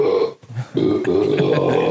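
Two long, rumbling burps, loud, separated by a short pause, with a faint low murmur in between, played back from a video of a man smashing and eating Swiss cakes.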